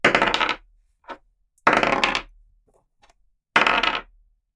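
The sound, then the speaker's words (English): Real dice are rolled three times on a hard table for saves, each roll a short, loud clattering rattle that settles quickly, with a few faint ticks in the pauses between and no voices. “You can roll with real dice.”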